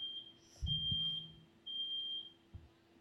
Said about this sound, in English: Oh. There's a fire alarm. Yep.